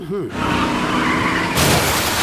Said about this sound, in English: Oh no! He crashed the shop window to steal Massimo's tires!